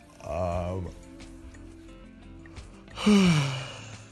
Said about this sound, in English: Sorry for yawning.